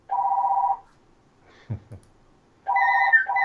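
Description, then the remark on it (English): A phone ringtone plays as a steady electronic tone, pauses briefly while something thumps or shuffles, then rings again with a higher warbling pattern. No one speaks. “Oh, your phone's going off.”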